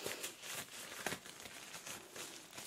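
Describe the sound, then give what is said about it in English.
Gloves being peeled off before a hearing test with a clicking device, a continuous run of soft crinkling and rustling with a few sharper snaps, fairly quiet and heard alone without any talking. “Just take my gloves off for a moment.”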